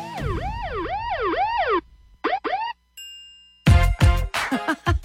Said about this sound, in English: I could have used those sirens yesterday.